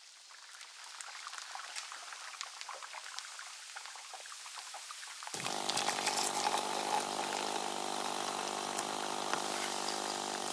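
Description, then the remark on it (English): An Italian barista espresso machine runs: a crackling, bubbling hiss for about five seconds, then a loud, steady mechanical drone with harsh steam-like hissing kicks in abruptly and continues to the end. “Meredith says it's a proper Italian barista machine.”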